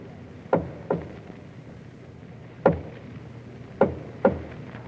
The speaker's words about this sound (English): It is 2 o'clock in the morning, many months later. There's a soft rap on the door of the palace nursery.